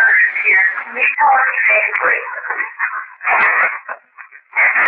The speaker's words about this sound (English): You'll hear … ask her question, if Fred's grandmother is here, can you please state your name? And a burst of static after.